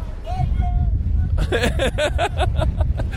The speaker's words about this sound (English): I could sit here for a little longer at Niagara Falls. I hope the sound on this is semi-good. I hope you're hearing this, the falls.